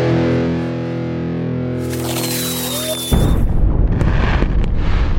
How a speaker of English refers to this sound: This jingle was so bad that we just kept running it every year. It's legendary.